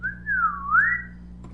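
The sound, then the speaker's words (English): A single sliding whistle tone dips slightly, then glides upward and fades, like a slide whistle going up. It stands alone over a faint low hum. “Is it like a slide whistle?”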